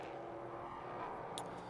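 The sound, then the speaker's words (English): The number 22 United Auto Sports race car's engine roars steadily and loudly as it passes on the track, a dense, continuous mechanical rumble with no voices over it. “Tussle on track with the number 22, United Auto Sports car, Jim Maguire, goes by.”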